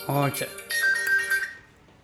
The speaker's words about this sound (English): should turn your phone off before you do interviews, shouldn't you? That's Christy now ringing.